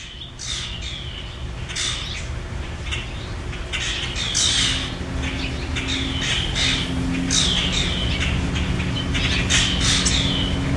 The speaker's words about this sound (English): We have so many birds. We sit out, and we'll watch the news on TV. We're just hanging out. This is the actual, I recorded this on my phone. This is the about 6 o'clock, 6:30, the birds that we're dealing with.